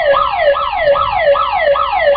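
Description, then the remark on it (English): An alarm blares with a fast, rising-and-falling electronic wail, cycling about every half second, loud and steady throughout with no voices. “Alarm went off.”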